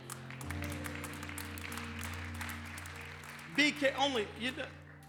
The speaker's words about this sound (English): Only about 25% of you clapped on that.